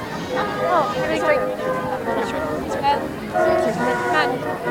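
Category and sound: vehicle, train passing with horn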